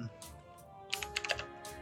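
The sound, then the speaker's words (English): A burst of quick, clacky keystrokes on a computer keyboard, fairly crisp, tapping in an uneven rhythm over a low background hum. “Sorry for the clacky keyboard.”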